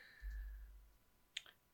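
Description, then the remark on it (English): Two quick, sharp mouse-button clicks in close succession, fairly faint, over a low steady background hum, with no one talking. “activate button, just like clicking on it.”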